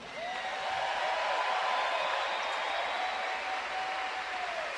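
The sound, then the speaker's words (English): A large crowd at a Kansas State event claps steadily for about five seconds for the student athletes, a dense, even wash of applause with a long sustained whistle-like tone running through the middle. “Let's give a big round of applause for all of our student athletes that have worked so hard this year to make this such a successful season.”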